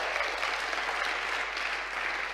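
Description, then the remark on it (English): A church audience applauds steadily for money raised in an offering, with dense, even clapping that holds a constant loudness for the whole couple of seconds and no talking over it. “We should give that a cheer and a clap.”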